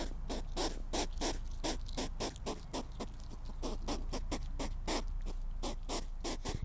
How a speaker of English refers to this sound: Question number six. What do hedgehogs sound like? It actually sounds like they're chewing.